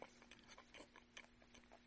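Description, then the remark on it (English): Quiet, pleasant chewing, a soft run of small moist clicks and crunches repeating every fraction of a second over a faint steady hum, with no voices. “And Sammy's chewing did not sound like that pleasant sound of”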